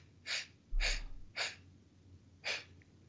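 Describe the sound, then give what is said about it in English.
A person imitates a film character's strained, strict rhythmic breathing: four sharp, breathy huffs, evenly paced at first, then a longer pause before the last one. “Dyson has to like blow up the place, all the stuff in the lab, with his very strict breathing rhythm”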